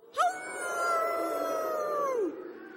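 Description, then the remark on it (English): A voice imitates a howl, translating spoken words of thanks into howls: one long, steady wail that rises sharply at the start, holds for about two seconds, then slides down and fades, loud with no talking. “I'm going to say the words, and you guys need to help me by translating them into howls.”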